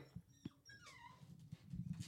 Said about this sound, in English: I hear the puppy. He's crying outside the door. Aww.